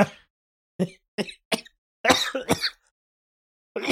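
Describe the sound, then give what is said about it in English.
A man coughs after laughing hard: a string of short, raspy coughs comes in quick bursts, building to a louder, harsher cluster before one final cough, alone with no talking. “You can't make a guy laugh so hard he coughs.”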